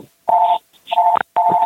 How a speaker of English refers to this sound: Somebody's unmuted and their phone's ringing.